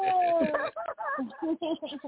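A small dog howls: a long, sliding high note, then a quick run of short, wavering yowls and yips, loud and continuous for about two seconds.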